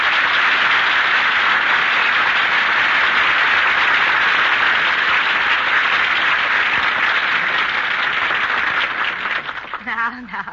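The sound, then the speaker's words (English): A crowd applauds steadily for about nine seconds, a dense wash of clapping that thins out at the end as a voice starts to speak. “have to applaud.”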